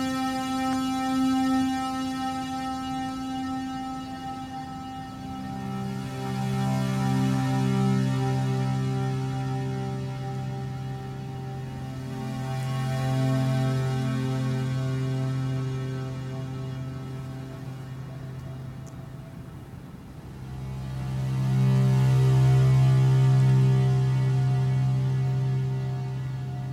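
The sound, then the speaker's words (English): Soft synthesizer chords, set with a slow attack, a long release and reverb, swell in slowly and hang in a long reverberant wash, each sustained pad shifting to a new chord every several seconds, with no voices. “So if I want to go in and make this less of a hard attack, I can, you know, I can bring the attack way down and make the release really long.”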